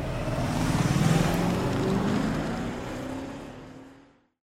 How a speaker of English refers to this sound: Yeah, well, it looks like I need to pass a truck here.